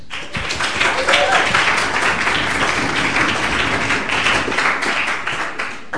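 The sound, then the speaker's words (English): An audience applauds a question put to a Greek minister during a question session, a dense, steady crackle of many hands clapping at an even loudness for several seconds, with a murmur of voices mixed underneath. “If every question is going to get applause, we may reduce the time for the answer.”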